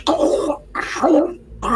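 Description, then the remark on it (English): A voice imitates tearing and slurping with three loud, raspy, wet bursts separated by brief pauses, sounding somewhat like throat clearing, with no clear words. “You hear what kind of sounds like tearing and slurping.”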